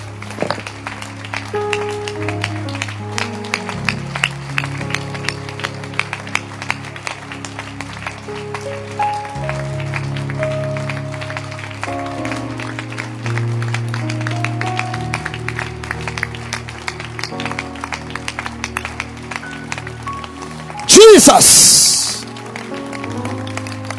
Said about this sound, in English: Clap your hands. Don't stop. I will tell you when to stop. I will tell you when to stop clapping your hands.